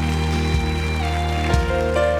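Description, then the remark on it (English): A church audience at a Sunday night service gives the Lord a hand clap of praise, a steady, dense patter of many hands clapping at once, over sustained low organ-like tones that hold underneath throughout. “Can you give the Lord a hand clap of praise for it?”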